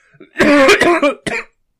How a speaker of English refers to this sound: Sorry. Yeah, if you're hearing those coughs in the podcast, by the way, there's a very good reason for that.